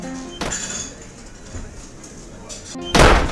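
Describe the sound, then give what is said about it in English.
A back door bangs open with a sharp, loud crash near the end, preceded by a softer knock and faint kitchen clatter of dishes in the background. “Left the back door open!”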